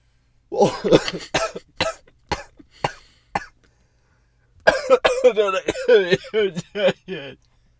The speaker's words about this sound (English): That's not why I'm coughing.